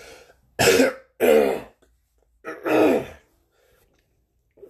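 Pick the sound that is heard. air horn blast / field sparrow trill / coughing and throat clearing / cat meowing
coughing and throat clearing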